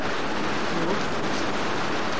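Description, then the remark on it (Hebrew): A steady, dense roar of rushing floodwater in Israel fills the whole clip, fairly loud, like a swollen stream surging past without pause. No voices stand out. “לראות בארץ כמויות כאלה של מים זה נדיר. זה פנסיה לחיות. פשוט המים עוברים דרכו.”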